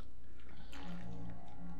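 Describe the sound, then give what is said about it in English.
A quiet sip of water: a few soft slurping and swallowing sounds over a low background hum, with no one speaking. “I'm taking a drink of water so I can do this very ghosty voice.”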